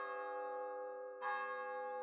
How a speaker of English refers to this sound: As Scrooge looked out into the hazy night air, wondering the time and whether his visions of Marley had been a dream, a neighboring church chime struck the four quarters.